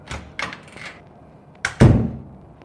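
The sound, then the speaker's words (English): Several hard bangs on a window, three lighter knocks followed after a pause by two heavier thuds, the last one loud and booming. No voices. “There is a banging on the windows?”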